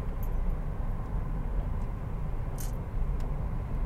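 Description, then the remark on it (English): A steady, low rumble of road noise from inside a car driving in traffic, with a faint engine drone and a couple of brief high ticks, and no one talking. “Man, I don't even understand why there's fucking traffic right now.”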